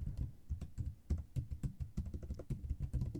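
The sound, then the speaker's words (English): Rapid, irregular clacking of keys on a computer keyboard, fairly loud, with a steady stream of sharp clicks and low thumps and no voices. “The keyboard is killing me. It's all I can hear through the headphones.”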